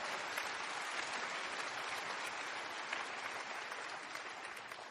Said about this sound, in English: Oh, go ahead. I know you want to clap for Jesus. That's good.